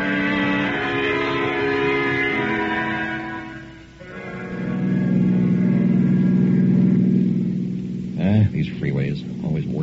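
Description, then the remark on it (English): A car engine drones steadily in rush hour traffic on a two-lane road under repair, its low hum dipping briefly as the car ahead slows and then swelling again before a man starts talking over it near the end. “No, got a blast away during rush hour traffic.”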